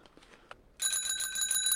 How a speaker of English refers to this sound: A sound from the past, a revolving bell.